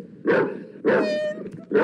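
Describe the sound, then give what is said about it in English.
A dog barks three times in quick succession, loud, the middle bark stretching into a brief whiny yelp before the third. “Can we get daytime check on Bork Dog? Barry, be quiet.”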